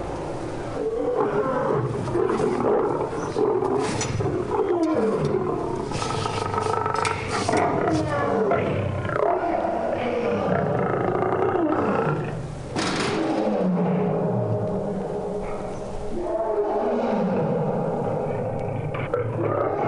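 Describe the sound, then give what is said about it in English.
Deep, rumbling animal roars at a zoo fill the space continuously, loud, with layered growls and grunts overlapping, echoing throughout the zoo. “When they're angry or agitated, you can hear their roars echo throughout the zoo.”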